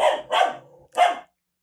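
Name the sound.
dog barking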